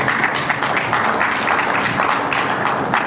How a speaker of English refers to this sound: So a few clap on these issues. Thank you for clapping.